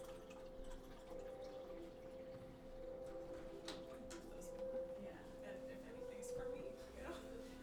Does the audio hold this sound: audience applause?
no